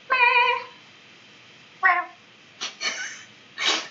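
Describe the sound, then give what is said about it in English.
A person imitates a cat, giving a few short meows in quick succession, with brief pauses between. The first is the longest and most tuneful, the later ones breathier, with no talking. “I do that at work all the time. Like, I make weird noises and meow and stuff.”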